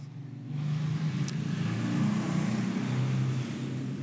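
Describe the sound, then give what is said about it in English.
A Harley motorcycle drives by in a neighborhood, with a deep, throaty engine drone that rises after a quiet start, holds steady for a few seconds, then eases slightly. No voices. “Like, Harley guy drives by like every time we have the garage doors open.”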